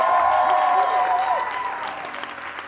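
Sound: audience applauding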